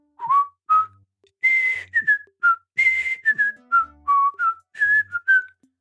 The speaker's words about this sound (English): Name these TV themes. I'm going to whistle them so you can't Shazam them.